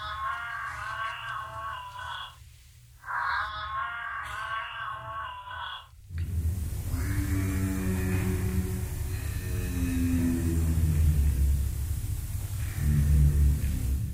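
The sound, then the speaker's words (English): Giraffe vocalizations: two bursts of a nasal, harmonic moaning call with a short pause between, followed by a long, steady, low humming rumble that swells slightly near the end. “I could do an entire episode on this one animal, the giraffe, because it really is the iconic African animal, that and the lion and a few other animals.”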